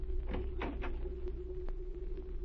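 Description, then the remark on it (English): A cabin door below deck on a ship is opened with a few quick clicks and a short rattling scrape over a steady low mechanical hum. “Have your gun ready when I open the door.”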